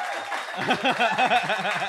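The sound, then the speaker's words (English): A person imitates applause and cheering with their voice to announce comedian Jordan Gray's entrance, producing a quick, rhythmic run of rising and falling whooping sounds over a hissy, clapping-like wash, lasting about two seconds. “I'll do some applause so I can come out.”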